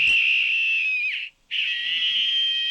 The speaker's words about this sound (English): And when you pull the alarm, it actually emits a scream. Well, here, let me tell you, we recorded it. Here's what the scream sounds like. We've dialed it down a bit.